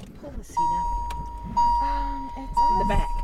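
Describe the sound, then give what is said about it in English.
Someone settles into the back of a car on a hot, wet day as a steady warning chime rings three times at an even pace, while people talk quietly over a low engine-like rumble. “We get into the car.”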